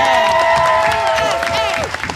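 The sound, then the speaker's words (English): A burst of applause from a live audience, with clapping over a dense crowd wash, while a loud, sustained voice cheers and then trails off downward near the end; continuous for about two seconds. “And obviously, applaud”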